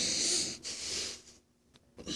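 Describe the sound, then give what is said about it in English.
A person imitates a stifled, muffled yawn: a few breathy, strained exhalations with short pauses between them, fairly quiet, with no speech. “Trying to muffle the yawn.”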